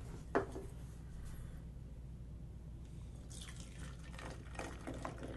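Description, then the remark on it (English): Beer pours into a can used as a dump bucket, with a brief sharp clink early on, then a quiet stretch before a steady splashing, gurgling stream of liquid. Nobody speaks. “It's easier to pour into a can than from a bottle.”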